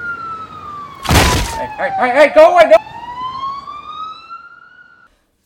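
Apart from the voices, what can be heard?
police car siren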